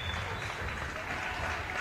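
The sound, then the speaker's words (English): A crowd at an Oakland women's basketball game claps steadily for senior Corey Grimes as she checks out, in a dense, continuous wash of applause, holding at an even loudness throughout with no pauses or individual voices standing out. “And big applause for Corey Grimes.”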